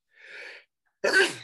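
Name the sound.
sneeze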